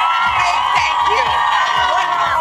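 A studio audience cheers loudly and continuously, a dense wash of overlapping shouts and rising whoops that holds steady without any break.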